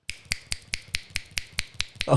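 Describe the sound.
A rapid, steady run of about ten crisp finger snaps, evenly spaced and sharp, made at bar staff to get their attention, with a voice starting up just as the snapping ends.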